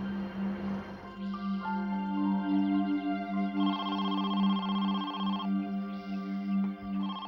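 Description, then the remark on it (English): A telephone rings in several repeated electronic bursts, fairly close and clear, over a steady low droning tone that runs throughout. “Five days after Regina's disappearance, Carolyn received a phone call.”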